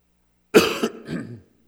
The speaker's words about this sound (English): I'm not going to say excuse me every time I cough, so I'm saying now excuse me. That covers me for all my coughs.